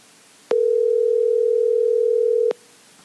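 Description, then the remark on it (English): A steady, unbroken telephone dial tone hums loudly for about two seconds as a call is placed to professional bass angler Todd Alton, starting and stopping abruptly, with nothing else around it and no voices. “We're going to see if we can get Mr. Todd Alton on the phone, pick his brain a little bit.”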